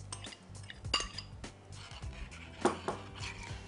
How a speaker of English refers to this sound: And then finally, I'm going to add some chicken broth, or you could add vegetable broth, or you could add just water, and some chopped Roma tomatoes, or any tomato from your garden.